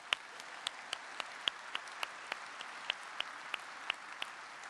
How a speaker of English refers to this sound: We can give a round of applause for that.